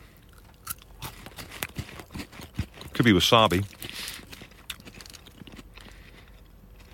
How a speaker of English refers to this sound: Can you hear my jaw click when I'm eating this one? Oh, yeah. That's my jaw. Isn't that awful? As is that wasabi Kit Kat.